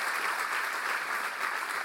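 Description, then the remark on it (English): An audience claps together for the Lord in dense, steady applause, a continuous crackling wash of many hands with no pauses, holding at an even, fairly loud level throughout. “And come on, give the Lord a good clap offer.”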